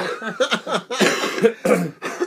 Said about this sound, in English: That's where I got the cough.